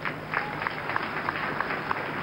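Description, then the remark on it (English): An audience at the Synagogue Church of All Nations applauds a man given a new red 2016 Jeep, a steady wash of clapping with a few sharper individual claps popping out at regular intervals over the dense, even crowd noise. “All right, let's clap for him.”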